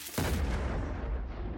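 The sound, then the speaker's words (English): A single massive explosion bursts in with a sharp onset, then a deep, rumbling roar sustains loudly and rolls on without fading. No voices. “There was a huge explosion, knocking the teacher back.”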